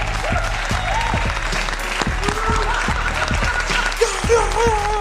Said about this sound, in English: Hit that applause button, man.